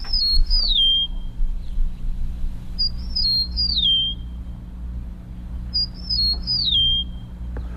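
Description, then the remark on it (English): An eastern meadowlark sings three times, each song a clear, slurred run of descending whistles spaced a few seconds apart, over a steady low rumble of background noise. “That was the eastern meadowlark.”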